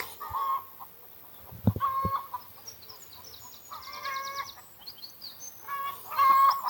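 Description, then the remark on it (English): Several hens cluck in short, repeated bursts, with brief pauses between calls and a few sharper notes mixed in; no one speaks. The hens are behind an allotment fence at the top of a field, calling for their breakfast. “I'm now at the top of the field, as you can hear, because the hens are clucking.”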